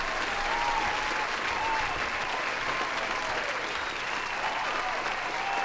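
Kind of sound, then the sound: crowd, applause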